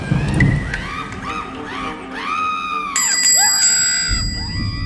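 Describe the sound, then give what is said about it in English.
A bell rings again and again without pause, its bright metallic tones ringing out and overlapping over a low rumbling background like rain and thunder. “No need to be quite so persistent with the bell, sir.”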